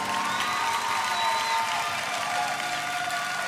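An audience applauds steadily for several seconds after a live music performance, a dense, even wash of clapping mixed with crowd cheering and a couple of thin, high whistle-like tones.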